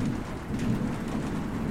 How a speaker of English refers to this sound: There was a terrible thunderstorm, and rain was pelting the car.